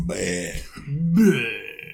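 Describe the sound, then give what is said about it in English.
A long, drawn-out burp rumbles loudly, stretching over a couple of seconds with a voiced, croaking tone that rises toward the end. “No, okay, it's just coming out of your fucking mouth. No, it's coming out of my stomach.”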